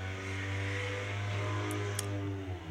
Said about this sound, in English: What? Honestly, I think that was probably a truck with a rusted out muffler.